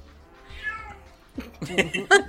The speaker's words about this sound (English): Is there puppy issues going on right now? No. Just a loud cat. She has feelings.